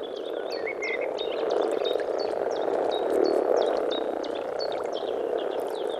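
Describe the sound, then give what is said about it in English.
A dense chorus of male common frogs croaks continuously on a large bog in their breeding season, calling to females, a throaty, overlapping rumble that fills the whole stretch, with faint high chirps sprinkled above it. “So they'll be, the males will be creating this beautiful chorus of croaking.”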